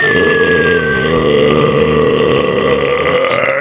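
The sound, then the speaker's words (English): A 24-ounce tall boy beer can being shotgunned in four seconds: a loud, unbroken stretch of throaty gulping and gurgling, with no talking over it. “just shotgunned a tall boy in 4 seconds for the veteran.”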